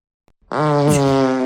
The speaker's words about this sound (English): God, that little fart I let out stinks so bad. And it was just a little baby.